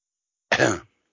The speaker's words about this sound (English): I know, but I'm going to, let me clear my throat